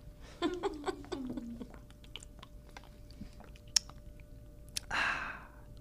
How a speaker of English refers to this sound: Sip a coconut water for the working man.